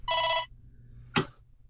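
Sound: telephone ringing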